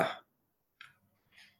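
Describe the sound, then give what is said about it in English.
A sharp, loud sneeze bursts out at the start, then two softer, shorter breathy sounds follow after a brief pause. “As I sneeze.”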